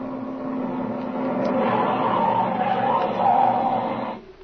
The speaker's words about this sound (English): there comes a car now, Speed. And boy, he's sure traveling, too.